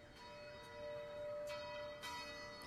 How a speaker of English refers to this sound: You can still hear those bells off in the distance.